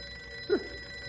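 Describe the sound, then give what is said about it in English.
A single short burst of a telephone bell ringing in a ranger station office, sharp, rising briefly out of a quiet, hissy background with no voices. “But as soon as any one of us mentions that we're glad we don't have to go out in it, the phone rings.”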